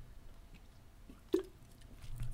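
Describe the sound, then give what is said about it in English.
A sip and gulp of beer, one short swallow standing out against quiet background noise, with faint mouth sounds before and after and no talking. “Man, I had to take a sip of my beer because it's the weekend.”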